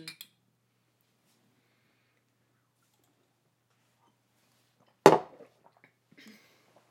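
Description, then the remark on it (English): A single sharp glassy clink of shot glasses meeting in a toast as people take shots, bright, followed by a few faint small clatters, with near silence before it. “Okay, so we're going to do our live on the air shots. Live on the air shots. Get ready for my big old gulps. Cheers.”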